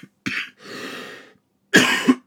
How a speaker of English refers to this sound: Excuse me. Got a cough here.